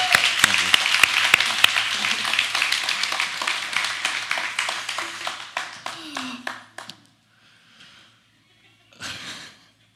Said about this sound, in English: So thank you for those reminders and the encouraging words. Can we give her a round of applause this morning?